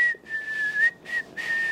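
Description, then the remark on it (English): Someone whistles a short melody, a few breathy, sustained notes with small pitch bends, with no talking. It sounds like an attempt at a familiar movie theme. “I'm not the greatest at whistling.”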